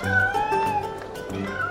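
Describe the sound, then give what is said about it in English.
Several cats meow and yowl over each other in a loud, continuous tangle of drawn-out cries as a man juggles them in the town of Baldur's Gate in a game, with a steady low rumble of background noise underneath. “You see that guy over there? He's juggling cats.”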